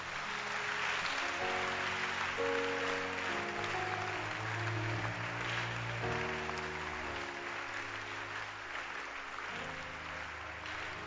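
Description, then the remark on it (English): An audience claps their hands for Jesus in a dense, sustained wash of applause that keeps going for the whole stretch, with low held musical chords sounding underneath and no one speaking. “Now you can clap your hands for Jesus.”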